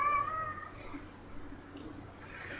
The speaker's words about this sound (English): Sorry about our retarded ass cat meowing in the background. He has a few extra chromosomes. I'm gonna kill that sumbitch.